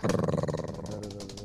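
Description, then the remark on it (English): A voice imitates a drum roll with a rapid, rumbling trilled sound, pulsing quickly at first and then smoothing into a steady, buzzing drone for about a second and a half. “I didn't even put together a little drum roll or a thing.”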